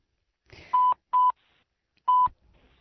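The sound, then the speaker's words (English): Three short telephone keypad tones, the first two quick in succession and the third after a brief pause, each a steady loud beep with clicking around them. “Okay, so Jonathan, let's go to the phones.”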